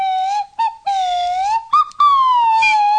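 A slide whistle plays a wobbly melody of sustained notes that glide and bend in pitch, broken by a few short gaps and quick blips, fairly loud and with no voices.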